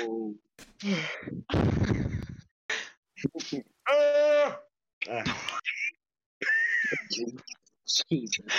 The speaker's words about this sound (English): I get my yawns from my mom.